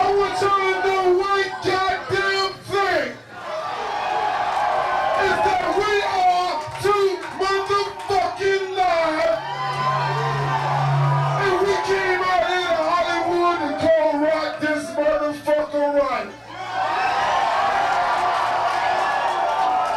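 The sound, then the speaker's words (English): A packed crowd of about 400 people at a nightclub in Hollywood, Florida, on June 10, 1990, cheers and shouts continuously for twenty seconds to see a new rap group perform, loud, many voices overlapping into a dense roar with a low hum underneath and brief dips between swells. “There was a full house at the Club Futura nightclub in Hollywood, Florida. Everyone was there to see the hot new rap group”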